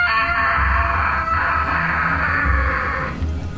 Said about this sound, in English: We still hear the screaming? Yeah. It is. It's scattered throughout these rooms.